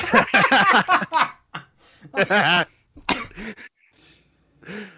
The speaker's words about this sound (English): Oh, shit. I had to mute because I laughed so hard I started coughing. Oh, fuck. I've had a cough since I got out of that. I developed a cough in the hospital and I still can't fucking shake it.